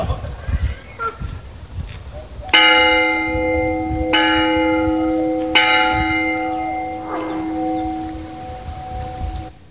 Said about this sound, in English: It's been a while since I've heard the church bells, and that I got to ring it. It was pretty cool.